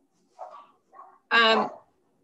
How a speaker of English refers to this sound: I am so sorry, that dog is barking.